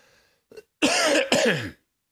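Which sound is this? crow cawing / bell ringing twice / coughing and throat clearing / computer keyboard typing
coughing and throat clearing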